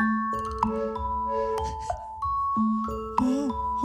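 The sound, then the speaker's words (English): A light, train-whistle-like hooting tone drifts through the background counter melody of a song, weaving among sustained musical notes with a brief bending pitch near the end. “This one has one of my favorite ones, and it's the train whistle. And it's real light. And it goes, hoot, hoot.”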